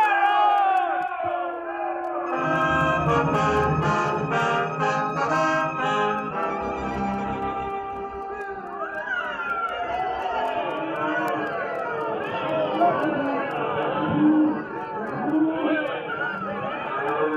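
A loud, dense crowd of townspeople in Abilene cheers and yells without letup as cowboys ride into town with their cattle, many voices whooping and shouting over each other, energetic throughout.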